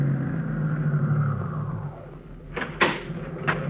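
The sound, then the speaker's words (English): A car engine idles with a steady, low humming rumble that eases down slightly, left running while a stop is made at a sandwich shop, followed by a few sharp clunks near the end, like a door or handle being worked. “Say, my battery's down, so just keep the motor running while I'm gone, will you?”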